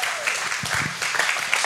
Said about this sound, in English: Can you give them a round of applause?